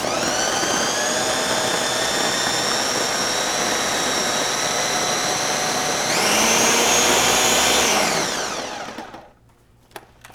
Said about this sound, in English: What kind of blender are you using? This is a Ninja.